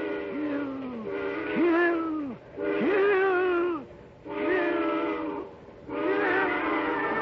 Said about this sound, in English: And then as the eerie shriek of the train whistle suddenly blasts into his ears, a new thought is wedded to it.